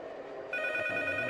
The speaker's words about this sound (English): Yeah, and then the phone rings, and then you can head out.